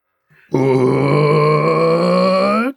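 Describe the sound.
A person imitates a Colossus roar, done as a whispered roar, with a single sustained, throaty growl lasting about two seconds. It is loud and steady in pitch, with a short breathy onset and an abrupt stop.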